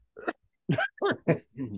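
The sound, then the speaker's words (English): Several short, throaty coughs in a quick irregular series, fairly loud, with brief pauses between bursts and no other sounds around them. “I'll tell you exactly what I think would happen, but I have to cough first.”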